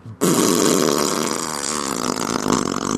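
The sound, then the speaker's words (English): A loud, sustained raspberry-style fart noise made with the mouth, buzzing steadily for nearly three seconds after a brief quiet start. “Are you going to make some fart noises?”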